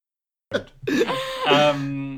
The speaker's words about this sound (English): I can tell this is your normal cough.